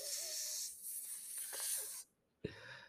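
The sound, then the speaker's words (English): A long, breathy snake-like hiss, probably made by a voice, holds for about two seconds, stops abruptly, then a sharp puff starts a second, shorter hiss. “They could not say more because their heads were changing into snakes, snake heads. They could only hiss.”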